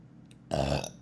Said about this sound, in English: I burp a lot.